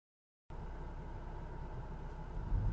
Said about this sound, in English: Okay, so you hear that background noise. He's in the car.